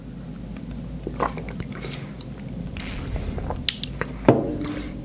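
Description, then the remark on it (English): Apple slices with peanut butter being bitten and chewed, a run of irregular crisp cracks and crackles over a low rumbling hum, with one sharper crunch standing out near the end. “Take you back to your snack.”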